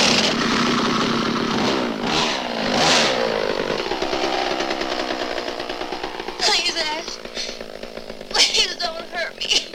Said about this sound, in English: She turns back to the demon bitch, and he pulls out a chainsaw and cuts her head open.